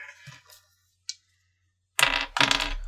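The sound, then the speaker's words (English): Dice clatter across a table during a D100 roll in a tabletop role-playing game: a faint click, then two loud rattling bursts of hard tumbling, one right after the other, with no one speaking. “Please roll me a D100.”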